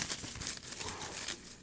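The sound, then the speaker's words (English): Paper crinkling, a steady run of dense, irregular crackles and rustles with no pauses, fairly loud and heard on its own without any voices. “That sounds like paper, man.”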